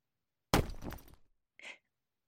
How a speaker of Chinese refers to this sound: 这孩子怎么还砸东西呢？